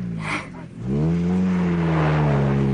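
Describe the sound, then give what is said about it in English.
The racing car of racing driver Ladislaus Malinowski, its engine revving up after a brief hissy rush, settling into a loud, sustained buzzing whine that climbs slightly in pitch and then holds steady. “He had a bad crash last year. He was quite badly injured, but I believe he's driving again now.”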